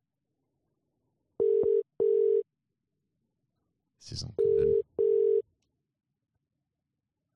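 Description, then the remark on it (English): A telephone ringing tone heard down the line during a live phone call: two double-burst rings, steady and fairly loud, with a man speaking briefly just before the second pair. “Oh, it's ringing in my ears.”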